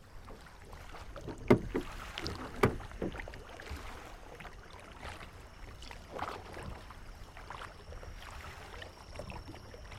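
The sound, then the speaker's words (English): Paddles from several canoes dip and swish through calm lake water at night under moonlight, in an irregular rhythm, with a couple of sharp wooden knocks early on and steady soft splashing throughout. No one speaks. “Keep the canoes close.”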